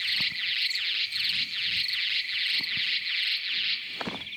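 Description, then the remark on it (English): Tiger moth ultrasonic sonar-jamming clicks, used against bats and slowed down to be audible: a dense, high-pitched rattling buzz that swells in regular bursts about three times a second, steady and fairly loud throughout with no voices. “Its high-speed clicks are slowed down so we can hear.”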